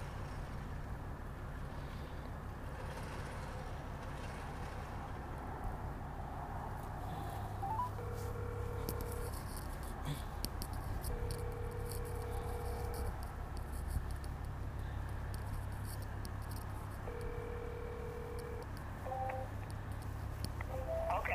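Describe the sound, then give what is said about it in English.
A phone call being placed: brief dial tones, then three long, steady ringback tones with pauses between them, over a constant low engine-like rumble. No one speaks. “Let me call her right now.”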